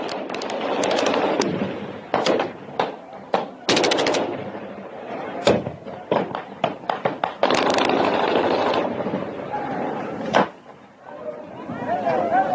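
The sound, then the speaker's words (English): Sharp, rapid gunshots crack out in bursts, some in quick strings like automatic fire, with a few isolated loud bangs, while voices talk and shout underneath, from a video of a Mexican town attacking cartels with machetes. “Boy starts shooting.”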